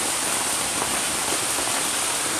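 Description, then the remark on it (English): Heavy rain drums steadily on the roof of a hoop house, a dense, continuous hiss and patter with no break, loud throughout. “So you can imagine how much rain we have. And you can hear it also.”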